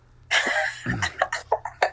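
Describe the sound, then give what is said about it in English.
A loud burst of coughing followed by a rumbling throat clear, then several short sharp coughs in quick succession, with no talking. “I was talking about you coughing.”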